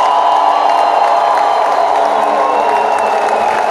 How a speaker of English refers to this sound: Everybody expecting a turnaround encounter, give Jesus a clap and a shout of praise.